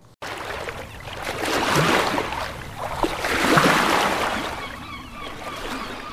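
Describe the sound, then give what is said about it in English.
Ocean waves wash in steadily, swelling into two louder surges of hissing surf before easing back, with gentle splashing and trickling water throughout and no voices. “Enjoy the sounds of the ocean as they drift upon the sea of tranquility.”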